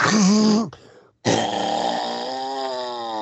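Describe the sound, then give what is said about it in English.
Two loud, honking nose blows, the first short and the second drawn out, each with a buzzy, trumpet-like tone that slowly fades. There is no talking. “Well, we all know you're blowing your nose.”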